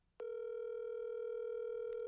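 A phone's ringback tone on an outgoing call: after a faint click, a steady, mid-pitched, slightly buzzy tone starts and holds unbroken at an even level to the end, with no voices.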